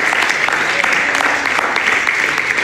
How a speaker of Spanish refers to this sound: Denle un aplauso al Señor Jesús.